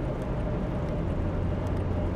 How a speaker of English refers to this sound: I used to call these things roadkill back in the day when I would set a recorder up in the car and go driving. And I guess this is a roadkill. New Jersey Turnpike roadkill.